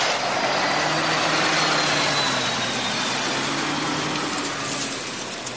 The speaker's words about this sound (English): Well, parking this big old truck here out in front of Cyborg Dave's place.